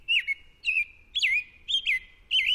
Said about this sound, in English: This American robin will lay one egg per day for 3 to 4 days.